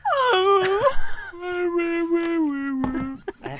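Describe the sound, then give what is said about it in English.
A dog whines and moans in long, wavering tones, first rising and falling in pitch, then settling into a steady drawn-out moan that trails off with a few short whimpers. “Your dog makes no sense. It's a Charlie Brown adult dog.”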